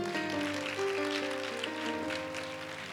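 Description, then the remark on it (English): A crowd claps steadily for a few seconds for the dean of a Bible school, a dense, even patter of many hands, with sustained low musical tones humming underneath. “Come stand in front. This is the dean of our Bible school. Clap for him.”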